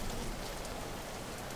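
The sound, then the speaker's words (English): Steady, heavy rain battering against windows, a dense continuous patter that fills the space at a constant level, with no voices or other sounds. “All around you can hear the sound of the rain battering the windows and everything.”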